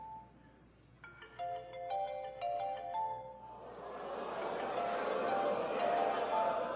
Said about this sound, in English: Go on, answer your phone, nigga. Just get that shit out of here. I'm in the middle of something important.